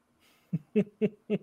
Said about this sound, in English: Is it the cat? Is it a child? It's a creature. Oh, there we go. Cat. It's a cat, yeah. We have a visitor on the Bones Horror Podcast. This is Dexter.